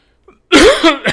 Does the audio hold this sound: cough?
yes